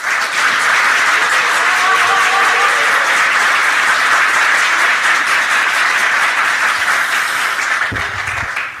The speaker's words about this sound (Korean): 더불어민주당 이재명 당대표님을 먼저 큰 환영의 박수로 모시겠습니다.